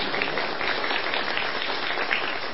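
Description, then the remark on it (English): An audience breaks into sustained applause after the speaker introduces his wife, a dense, steady wash of many hands clapping at once with no pauses, fairly loud and filling the whole moment without any voices. “Yeah, that's worth a hand clap.”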